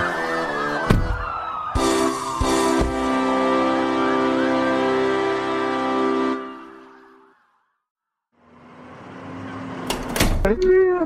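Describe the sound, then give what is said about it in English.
Sharp clunks of a car door opening as someone gets out of the car, followed by a steady wailing siren tone. The sound drops to near silence, then more abrupt door thuds and clicks return. “Damn, yeah, I'm getting out of the car.”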